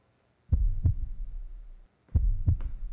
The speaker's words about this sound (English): Oh, the heartbeat of Chicago. Boom, boom, boom, boom.